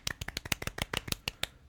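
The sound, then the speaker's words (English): Soft, polite golf clapping: about a dozen light, crisp claps in a quick, slightly uneven patter lasting under two seconds, with no voices. “Golf clap.”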